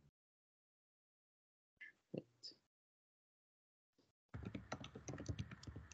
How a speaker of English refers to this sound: I just heard him typing.